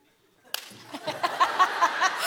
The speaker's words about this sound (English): Now go over to God and say, I'm sorry for slapping